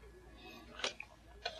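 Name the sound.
clock ticking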